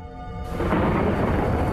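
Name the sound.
thunderstorm with rain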